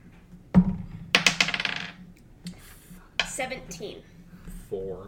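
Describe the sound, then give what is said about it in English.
Dice clatter across a hard tabletop during a tabletop role-playing game, rolled for a skill check: a sharp knock, then a quick rattling tumble that settles, followed by a few bits of muffled talk and more small clicks. “Roll me a religion check. Armina, roll me a performance check.”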